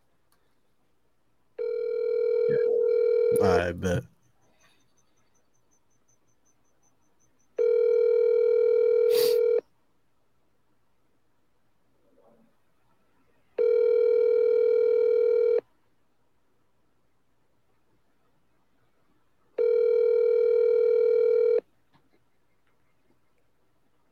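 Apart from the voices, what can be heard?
phone ringing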